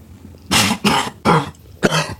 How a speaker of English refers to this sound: Yeah, I'm just getting old. Seems I can't smoke or laugh now without coughing.